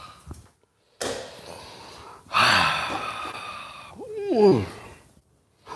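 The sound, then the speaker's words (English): A few noisy slurping sips of hot coffee, then a satisfied, voiced "ahh" exhale that slides downward in pitch before a short silence. “It's called this simultaneous sip, and it happens now.”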